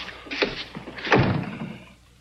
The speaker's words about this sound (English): Wolf catches up and holds his arms. So Charlie closes the door.